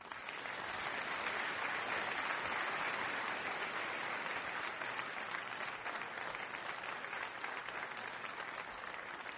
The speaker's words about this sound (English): so if I do one of those, it would be great if you could applaud when we come back from breaks and those sorts of things for the radio broadcast and the television.